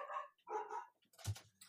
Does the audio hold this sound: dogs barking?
yes